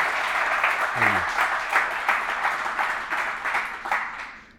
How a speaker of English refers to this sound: So just from all of us at SoftTech, we'd love to give you another round of applause. Thank you very much.